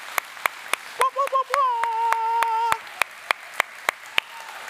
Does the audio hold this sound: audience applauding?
yes